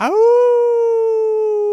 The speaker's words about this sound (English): I was actually a recording I'd taken of a wolf that I was playing off of my phone. A recording? Yeah. I opened my mouth. I played the recording.